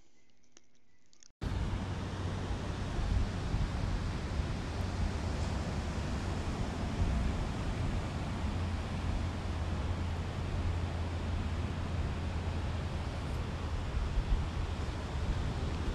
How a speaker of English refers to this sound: Yes, it's true. I only called back so I could let you hear the waves better. Different part of the planet. Same ocean.